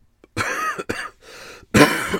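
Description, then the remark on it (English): A few harsh coughs and throat-clearing rasps come in quick bursts separated by brief gaps, with a final loud cough at the end and no talking. “There was some coughing and some burping as well because I'm on Diet Coke.”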